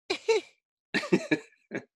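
A run of small, close coughs in quick bursts, two, then three, then a single final one, with brief silences between the groups and no talking.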